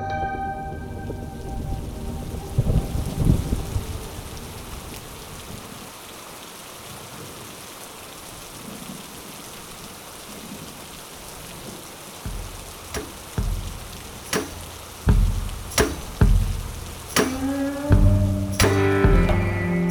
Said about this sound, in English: Then, it started raining.